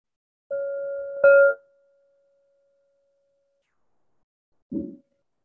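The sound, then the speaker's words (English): A meditation bell, the first of three marking an hour-long sitting practice, rings out in a clear, steady mid-pitched tone, swells with a sharp strike, then hums and fades over a few seconds. A brief soft thud follows after silence. “Here are three bells, one in just a moment, one at 30 minutes in, and then the final bell an hour from now.”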